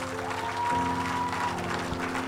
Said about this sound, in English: I need people to give the Lord a mighty clap offering.